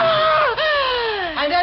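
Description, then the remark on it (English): In a drama, an elderly woman standing at her bedroom window in a granite house bordering a graveyard screams in fright: loud, high-pitched wailing cries that slide downward in pitch, broken by two brief catches of breath, with no other talk. “Why did you scream?”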